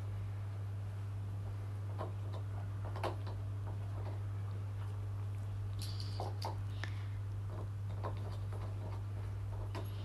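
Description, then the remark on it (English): Two pet dogs chewing their bones at home: irregular crunches, clicks and gnawing scrapes at an uneven pace, over a steady low electrical hum, with no one talking. “But as you can hear, they're content chewing their bone.”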